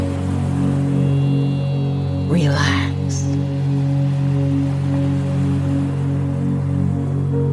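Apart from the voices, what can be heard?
ocean waves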